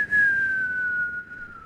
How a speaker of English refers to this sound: It kind of sounds pathetic, kind of like my other whistle, which is just like.